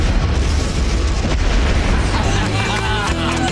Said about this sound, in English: And I have to say, it's a very cool deal when they do blow up the garbage truck.